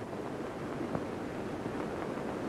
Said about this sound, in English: Just sounds like rain. Yeah, it does. I mean, it's kind of slow to start.